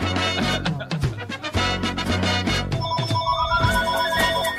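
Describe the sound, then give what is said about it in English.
A loud musical jingle gives way to a bright electronic telephone ring, steady warbling tones repeating over the music near the end, with no one talking. “Phone calls with Bubba.”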